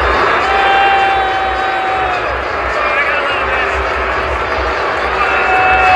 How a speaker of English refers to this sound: that is a man who just got booed by the folks here at the Dome for good reason